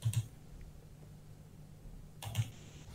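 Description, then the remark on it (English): A loud computer keyboard clacks in two short bursts of a few keystrokes each, one at the start and one near the end, separated by quiet hum and no talking. “but no, I would look it up, but my keyboard is really loud.”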